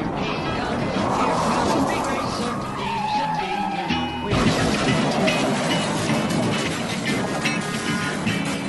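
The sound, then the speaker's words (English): A race car skids with a rising tire screech, then a sudden crash and clattering impacts as rookie Suarez goes up and over Regan Smith, amid roaring engines and a loud, dense crowd-like din, continuing through the whole stretch. “Big trouble. That's the rookie Suarez up and over Regan Smith.”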